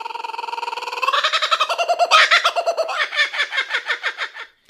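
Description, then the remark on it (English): A bird call sound effect: a rapid, harmonic squawking trill with fast repeated pulses that rises in pitch, then continues as steady chattering calls before cutting off abruptly. Loud, with no voices. “Anyway, all right, let's get on to the joke. Slap the bird.”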